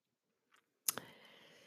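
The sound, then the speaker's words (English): A phone is handled and tapped while being checked at home: a faint brush of movement, then two sharp clicks in quick succession, followed by soft lingering handling noise. No one speaks. “And check my phone at the same time.”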